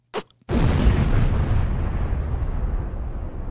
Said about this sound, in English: Wow, I really like that explosion at the end. That's sick.